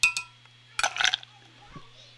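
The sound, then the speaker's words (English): Port wine is poured into a glass in a short splash, bracketed by light glassy clinks before and after, with faint background hum. “So I'm going to pour some of this into this glass here so I can drink it like a normal person.”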